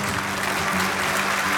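A steady wash of audience applause on a 1969 live musical comedy recording, dense clapping from many hands holding an even, fairly loud level throughout with no voices standing out.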